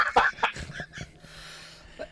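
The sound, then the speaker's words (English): A quick run of rough coughs, four or five harsh bursts packed into the first second, followed by quiet background hiss with no talking. “Man, can you tell it's been a while since I've done a podcast and talked so much because I keep coughing?”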